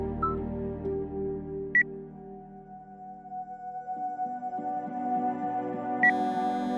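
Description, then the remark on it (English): A phone ringtone plays on its own for an incoming call from an unknown caller, a steady electronic melody of held tones with two short, higher chirps breaking in, at a moderate, even volume. “Because your phone is ringing.”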